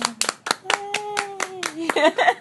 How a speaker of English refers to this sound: Here, we can clap for it.